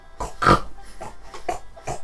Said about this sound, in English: Several pigs are wallowing around in the mud.